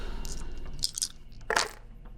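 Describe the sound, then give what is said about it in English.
Dice being rerolled clatter across a tabletop in two short, bright rattling bursts about half a second apart, fairly crisp over a low background hum, with no one talking. “I'm going to spend another 3 seconds. Okay. To reroll these.”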